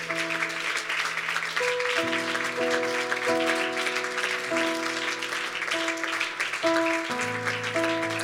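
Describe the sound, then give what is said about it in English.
A large crowd at an evening church service claps steadily and enthusiastically in praise of the Lord, a dense, sustained wash of applause that continues throughout, with held organ or keyboard chords shifting underneath. “And why don't you give the Lord one more great hand clap of praise this evening?”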